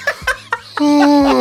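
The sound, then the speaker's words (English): A voice imitates a loud, obnoxious yawn: a few short breathy bursts, then a long, drawn-out groan that slowly slides down in pitch and stays loud to the end. “I want to talk shit about people who like to do loud and obnoxious yawns.”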